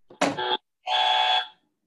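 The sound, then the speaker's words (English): Two quick buzzer blasts from a quiz game, a short harsh one followed by a longer steady electronic buzz, loud with a brief gap between them, as players buzz in to answer a Bible verse question. “I want to know, everybody pick up your hand off the buzzer.”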